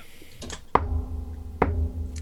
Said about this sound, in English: Are they knocking? Yes. At least they're polite.